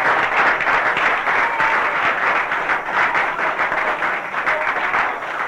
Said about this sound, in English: Give her a jolly clap.